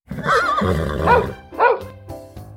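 A horse whinnies, a loud, quavering neigh lasting about a second, followed by a shorter second call and quieter trailing sounds. No one speaks.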